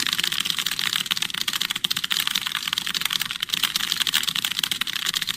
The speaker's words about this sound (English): Man, that's some fast typing. Oh, shoot! So it's 300 words per minute? Is that what it said here? Yeah, that's correct. That's fast, man. 300 words per minute is flying.